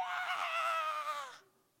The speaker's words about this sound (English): Kids, we've got a couple of kids that can be very dramatic, and you'll hear some kind of a fall or something, and all of a sudden you hear this screaming.